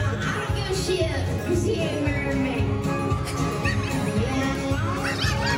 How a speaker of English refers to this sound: It's somebody in the background's cheering to it. That's the bad part.